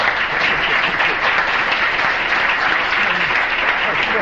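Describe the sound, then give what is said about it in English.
A large audience applauds to thank Slavoj before a lunch break. The clapping is a steady, dense, continuous wash of many hands at a fairly loud, even level for several seconds without pause. “Don't applaud so much.”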